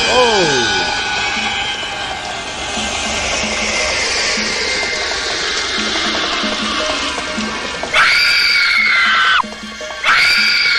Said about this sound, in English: That scream explains it all.